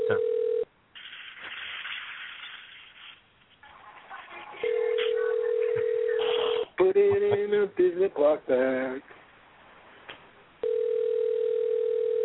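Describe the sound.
A steady ringback tone buzzes in long, evenly spaced bursts as an outgoing call to a woman rings, with muffled voices and some tonal chatter in the gaps between rings.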